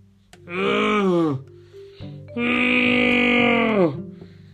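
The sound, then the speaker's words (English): A man voicing Anakin in a Star Wars scene groans in pain twice, two long strained vocal cries with rich harmonics, the first about a second, the second longer, each sagging in pitch as it fades, loud against a quiet background. “Anakin groaning in pain.”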